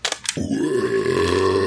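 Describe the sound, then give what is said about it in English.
A long, loud, deep burp rumbles out for over a second with a steady throaty pitch, preceded by two quick sharp clicks. No one speaks during it. “I'm sorry, that was rude.”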